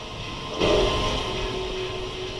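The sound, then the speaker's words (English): A door creaks open in a film scene, one long, drawn-out groan that starts abruptly and holds a steady, low-pitched tone over a constant rumbling hum, with no one speaking. “Ooh, we hear a creaking of the door.”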